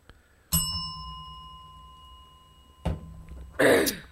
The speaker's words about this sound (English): Hit the bell.